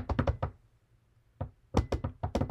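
Quiz contestants knocking on a hard surface to buzz in to answer a football trivia question: rapid clusters of sharp knocks, a burst of about five, a pause of silence, then another quick flurry of loud raps.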